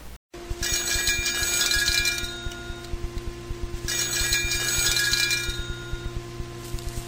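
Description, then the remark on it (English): A telephone rings in two long, bright bell trills separated by a short pause, with a steady ticking clicking along underneath throughout. No one speaks. “The phone is ringing.”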